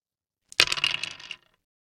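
Dice clatter across a hard table in a quick burst of rattling impacts that settles within about a second, fairly loud, with no voices; the dice are rolled for a persuasion roll in a game.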